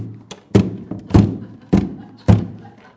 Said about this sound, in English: When you bang your head against a wall, it hurts. Once I actually twigged that to stop the pain, you stop banging your head against the wall.